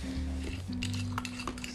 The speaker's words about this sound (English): Clink, clink, clink.